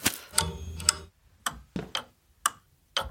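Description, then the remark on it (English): A light timer switch ticking: a run of sharp, dry mechanical clicks, roughly two per second and slightly uneven, with a faint hum underneath at the start and no talking. “Why is this light on a timer?”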